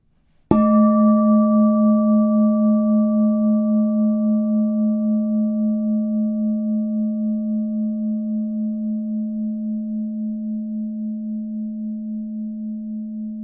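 A single meditation bell is struck once, giving a bright attack followed by a long, pure ringing tone that sustains and slowly fades with a gentle wavering shimmer, alone without any voices.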